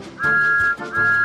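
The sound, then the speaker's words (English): Two loud whistle blasts in quick succession, each a steady, piercing tone held for a moment before cutting off, with a brief gap between them. “Whistle!”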